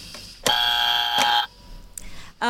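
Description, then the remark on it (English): A loud, harsh quiz-game buzzer blares once for about a second, a flat electronic drone with no talking, followed by a brief quieter stretch before another burst cuts in at the end. “Sorry, I was a bit late with the buzzer there, but you're well under the 15 seconds.”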